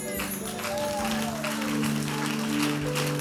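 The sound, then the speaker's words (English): An audience claps in a steady, dense patter that holds for a few seconds, with low sustained keyboard or organ tones humming underneath. “Before you clap, he said, I'll break in pieces the gates of brass and cut in sunder the bars of iron.”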